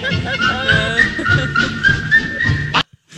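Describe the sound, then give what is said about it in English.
Someone whistles a short, wavering tune for a few seconds, the melody rising and falling over a busy, muffled background before cutting off abruptly. “Are you listening for like a whistle or like actual words?”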